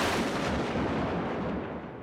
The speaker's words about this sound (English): The clouds rolled in and turned what was already a dark blue sky to a sky of black. Lightning struck.